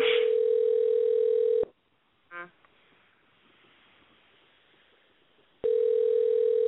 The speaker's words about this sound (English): I don't like the fact my friend is not picking up his phone.